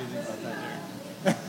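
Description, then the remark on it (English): A low murmur of voices runs throughout, then a single sharp crackling pop bursts out near the end, like a brief microphone glitch cutting through. “I think there's a glitch in the mic or something.”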